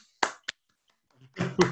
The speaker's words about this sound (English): You'll have to unmute yourselves. I'm sorry, I can't mute you. Anyway, that was not a very well organized round of applause